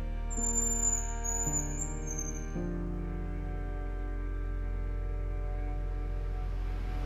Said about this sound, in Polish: … próbuje raz jeszcze i znów po kilku chwilach słyszymy głos Jarząbka.